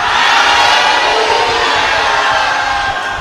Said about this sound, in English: If you are born again and you are glad that you are genuinely safe, stand up on your feet. Let everybody see you and shout hallelujah.